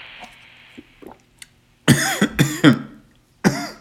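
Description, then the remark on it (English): A run of harsh, loud coughs after water went down the wrong pipe: two forceful bursts back to back, a pause, then one more, with faint quieter rustles and catches of breath before them. No speech is heard. “Water went down the wrong pipe.”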